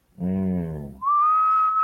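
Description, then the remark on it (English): A low, buzzy droning tone gives way to one sharp, steady whistle note held for about a second, loud, with no talking: a masked whistler in the stadium at Fenway Park blowing a whistle to signal a fastball. “And every time that fastball whistle went off, it was either a deep shot or a home run.”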